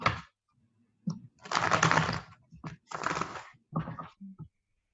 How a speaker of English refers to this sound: Okay, thank you. I'm just gonna shuffle the cards.